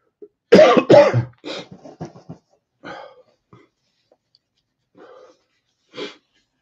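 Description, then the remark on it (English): A burst of harsh, rasping coughs, two or three in quick succession, followed by quieter throaty coughs and breathy clearing sounds scattered across the remaining seconds. “It looks like my cough didn't get in the way too much tonight.”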